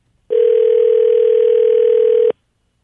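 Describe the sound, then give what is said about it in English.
A single steady electronic phone ringback tone sounds loud and clear for about two seconds, then cuts off into silence as the call goes unanswered to voicemail. No one is speaking. “I can't come to the phone right now, so please leave your name and number, and I'll get back to you as soon as I can.”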